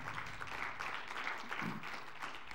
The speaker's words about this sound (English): In frigid temperatures, a round of applause for all the people that showed up and helped.